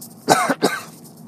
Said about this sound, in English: Excuse me one second, I'm going to take a drink of water because I am coughing here.